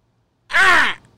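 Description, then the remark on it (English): A person imitates a baby bird call with one loud, high, scratchy squawk that bends up and then down in pitch. It is cut off as another squawk begins. “So you're going baby bird.”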